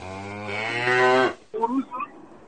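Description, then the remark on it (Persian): A cow lets out a long, loud, drawn-out moo, followed after a brief pause by a shorter, rougher bovine call, with no talking; cows grazing for kilometres beside a freeway near San Jose, California. “خب اگه دست راست اون فریوی رو نگاه کنی کیلومترها که بری یعنی گاوا اونجا دارن میچرن جان من.”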